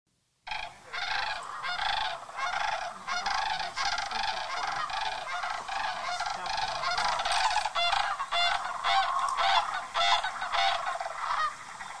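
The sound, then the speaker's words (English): A huge flock of hundreds or more sandhill cranes intermixed with snow geese calls all at once, countless overlapping honks and trills forming a dense, unbroken din that starts abruptly and holds steady throughout, with some other people talking. “Yeah, they're intermixed with snow geese, so this is kind of what the sound was.”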